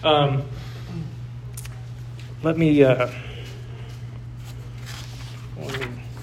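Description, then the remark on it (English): Paper sheets rustle and shuffle in short, soft bursts close by, with brief fragments of a man's voice and a steady low hum underneath. “Let me get situated here with this paper.”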